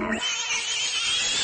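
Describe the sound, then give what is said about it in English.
A loud, shrill squeal from an animal about to be slaughtered holds steady for over a second, piercing and high-pitched with a harsh, strained edge, with no voices. “And didn't you always wonder what cows sounded like right before they got to slaughter? Or pigs?”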